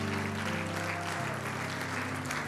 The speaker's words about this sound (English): Shout that wonderful name. Clap your hands one more time for Jesus.